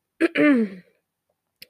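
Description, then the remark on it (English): A distinct throat clearing: a short rough burst followed by a longer voiced rasp, then a brief faint click near the end, with no speech. “Sorry, I had to clear my throat first so I can tell you this amazing thing that we do.”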